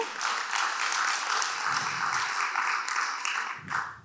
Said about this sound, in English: So let's just give them a little round of applause as a way of saying hello.